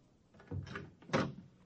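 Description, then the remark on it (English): A door opens in a deserted skyscraper: a low rattling of the latch and handle, then a brief creaking swing ending in a louder wooden knock. No voices. “Suddenly, I was in front of a door that read,”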